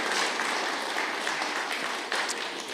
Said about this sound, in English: Thank you very much. Round of applause.